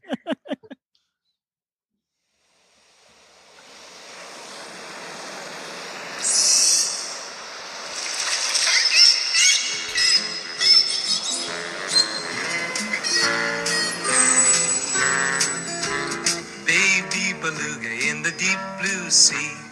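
A recording of a song about a beluga whale opens with a rushing, wave-like wash of noise and high whistling, squeaky calls like a whale, then a steady musical accompaniment fades in underneath and builds.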